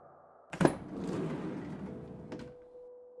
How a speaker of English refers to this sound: The moment was cut short by the side door of the van sliding open to reveal a petite woman wearing a business suit with dark hair tied neatly into a ponytail.